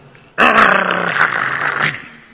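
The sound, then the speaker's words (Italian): A dog growls loudly and steadily over a bone for about two seconds, a rough, sustained snarl that starts abruptly and holds before easing off. “E se voi non mi credete, cerca di togliere l'osso dalla bocca del tuo cane e vedrai che lui si converterà in lupo appena che tu tocchi quell'ossa.”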